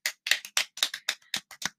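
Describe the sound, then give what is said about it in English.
A short run of hand claps, about eight sharp slaps in a steady, moderately quick rhythm, clear with no voices around them. “We'll clap for you.”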